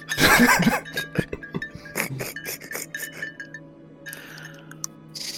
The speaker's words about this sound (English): Who's playing with cowbells? I think that's probably a highball glass with ice in it. It's a giant goblet full of iced tea mixed with bourbon.